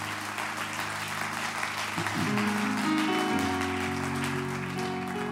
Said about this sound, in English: Can you give yourselves a hand clap?